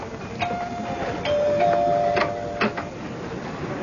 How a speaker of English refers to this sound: It was a night in June. A beautiful spring night. Daddy was in the study when the doorbell rang.